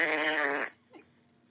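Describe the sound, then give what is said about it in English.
A voice blows a loud, buzzing raspberry imitating a fart, lasting about half a second and then cutting off, followed by a faint breathy trailing sound. “So I grab it, and I stand up, and I start ringing it and farting.”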